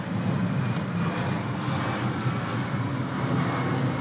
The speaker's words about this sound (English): The airplanes live!